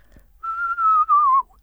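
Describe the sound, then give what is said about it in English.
A person whistles an imitation of an owl's descending whinny: one clear whistle lasting about a second, gliding gently downward and wavering into a quaver near the end, with no talking. “The whinny is a little harder, although it's simpler. It's a descending whistle, but the way that it whinnies is a little hard to do.”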